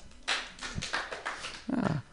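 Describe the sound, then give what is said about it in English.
An audience claps in a brief, uneven burst of applause, celebrating the speaker's father's recent marriage, with a low whoop or cheer rising near the end before the clapping fades out. “My dad recently got married. We can clap.”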